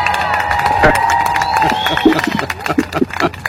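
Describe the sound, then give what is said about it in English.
A large crowd cheers and roars continuously and loudly, with whistles and scattered claps rising through the noisy swell of voices; a crowd sound effect. “And the crowd is ecstatic.”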